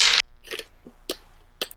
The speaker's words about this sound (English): Okay, so we're going to both roll 3 dice.